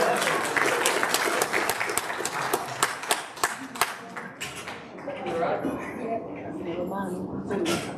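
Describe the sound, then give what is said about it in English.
Audience applause for a participant's gingerbread man in a guessing game: many hands clapping in a dense, steady patter for several seconds, thinning out as voices and chatter rise toward the end. “Round of applause.”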